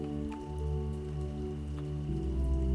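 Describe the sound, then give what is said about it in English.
Soft, steady rain patters gently with a few faint individual drops, blended with a sustained low tonal hum; quiet and continuous, with no voices. “And tonight, her music is the rain.”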